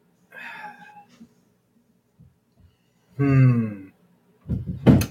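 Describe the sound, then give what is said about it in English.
Cats yowl and meow in a string of loud, drawn-out cries with strained, wavering tones, the longest call in the middle and a harsh burst near the end, with no talking. “What the shit is going on with the cats?”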